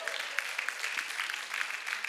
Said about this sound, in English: Let's give Jesus a hand clap.